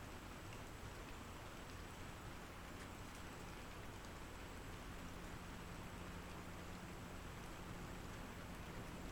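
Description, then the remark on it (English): Steady rain falls without pause, a dense hiss of drops pattering on surfaces, fairly quiet and even throughout, with no voices or other distinct sounds. “The rain adds another layer, a scrim, creating a painting, a dim world and a perilous lone boatman in the distance.”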